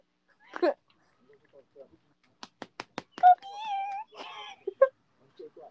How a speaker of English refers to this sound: I'm not sure if it's like a, I don't know if it's like a abandoned cat. You mean stray cat?